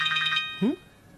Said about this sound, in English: could you answer this call